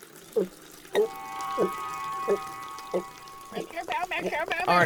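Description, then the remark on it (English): Coffee runs from the spigot of an urn in a steady stream for a few seconds, with soft knocks between, before voices start talking near the end. “Look, just put your mouth under the spigot and pour it directly in.”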